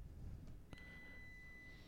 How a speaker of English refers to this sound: Can you hear that beeping? Yeah. Is that your place or mine? Yeah, it's the dishwasher. Give me a second. The dishwasher beeping.